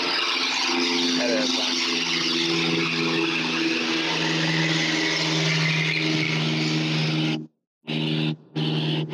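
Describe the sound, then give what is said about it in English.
A small propeller plane drones overhead, its engine a steady, loud buzzing hum with a low throbbing tone that holds unchanged for several seconds before cutting out briefly near the end. “Sounded like maybe a Super Cub though.”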